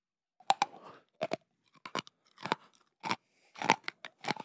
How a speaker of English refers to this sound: Eat the cat food.